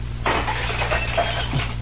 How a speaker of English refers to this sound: I didn't touch it. Honestly, I didn't. I just put my hand toward that goblet, and it shattered.